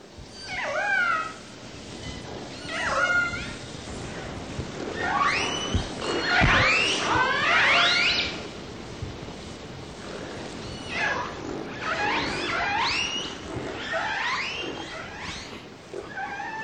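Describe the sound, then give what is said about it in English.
Orca calls and whistles used in social communication, recorded in Glacier Bay National Park, Alaska: a series of squealing, rising and falling tonal cries and whistles, some overlapping in bursts, over a steady underwater hiss, with no voices. “Here's a recording of, I believe these are calls and whistles used in social communication.”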